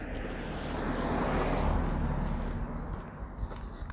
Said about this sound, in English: And yeah, here's another car while I was in a nice flow.